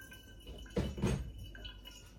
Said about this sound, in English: And then a little bit of water just off the boil, just to wet the filter.